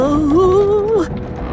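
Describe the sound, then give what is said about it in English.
Railway tracks under Thomas creak and wobble with one long, wavering groan lasting about a second, its pitch sliding slightly up and down, before it drops away into a low, steady rumble. “And they started to creak and wobble some more.”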